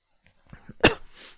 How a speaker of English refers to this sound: I just coughed into the mic.